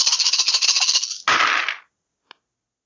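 A handful of dice, rolled for an armor rating in a game, clatters in rapid, bright clicks for about a second, then tumbles in a louder burst that stops abruptly. One last small click follows after a short silence. No voices.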